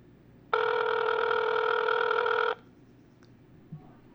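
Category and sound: signal or alarm, phone call ringing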